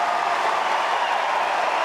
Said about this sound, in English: Cheer as loud as he's heard in all his days at Wimbledon.